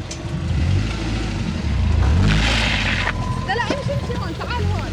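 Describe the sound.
A rally car engine rumbles and revs, with a louder surge in the middle, as the driver pulls into her prep area for the second trial, while indistinct voices murmur in the background.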